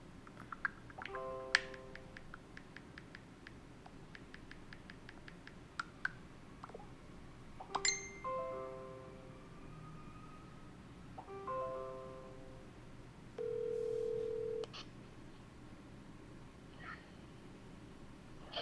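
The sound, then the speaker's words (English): Phone beeps from an incoming Facebook call sound amid scattered clicks: two quick bursts of short stepped electronic tones, then a single longer, steady mid-pitched beep. Nobody speaks. “I heard like a beep beep beep.”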